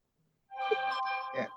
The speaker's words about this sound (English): What was that? Whose phone was that? Oh, no. Well, I turned it down.